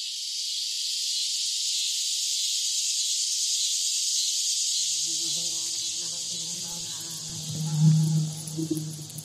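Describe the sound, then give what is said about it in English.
A dense, steady chorus of cicadas in tall oak, pine and maple trees on a hot Indiana summer day drones without a break, loud and shrill, while fainter lower hums and murmurs creep in underneath during the second half. “tall, mature trees, oaks, pines, maples, perfect for cicada hatchlings to climb, their haunting call becoming a choir by mid-afternoon, a sound that even today makes me nostalgic for lazy Indiana summers, the heat beating down as we killed time.”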